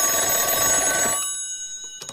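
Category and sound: household object, old telephone ringing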